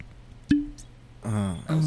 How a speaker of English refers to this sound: But we start off every bottle with a cork pop. So that's how we're gonna start. Nice and close, sir.